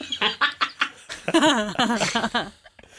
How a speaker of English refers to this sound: Moot and Bombera, you hear what sounds like echoing quacks coming up.